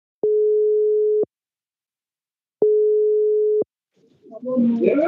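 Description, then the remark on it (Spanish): A WhatsApp video call rings out with two long, steady electronic tones, each about a second, separated by a pause. Then a voice starts speaking as the call connects. “Decidí llamarlo en abril, una videollamada por WhatsApp.”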